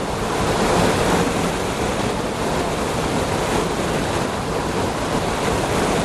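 A waterfall in Scotland roars in a steady, dense wash of rushing water, loud, with no breaks or changes across the whole stretch and no voices.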